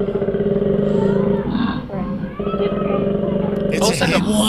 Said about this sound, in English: That's koalas fighting.